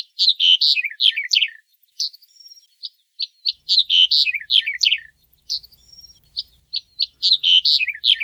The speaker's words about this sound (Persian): در پرسجویی که از دوستان گیلانی کردم، به احتمال زیاد منظور از زرد ملیجه یا زرد ملیچه به معنی گنجشک زرد یا پرندهی به نام زردپر سرسیاهه که در قسمتهای زیادی از ایران از جمله گیلان زندگی میکنه.